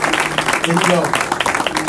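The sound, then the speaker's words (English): A crowd claps for the media team in dense, overlapping bursts for about two seconds, with some voices calling out beneath the applause. “Now, let's clap for the media team for this.”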